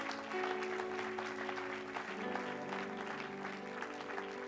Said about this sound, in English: Come on, Grace Church, one more time. Clap your hands to the Lord.